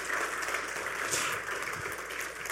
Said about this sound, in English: Okay, give him a round of applause as he comes back in.